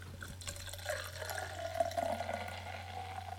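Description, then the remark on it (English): Beer pours steadily into a glass for a few seconds, a continuous gurgling, fizzing stream with a low hum underneath and no talking. “Just listen to that sound of it pouring.”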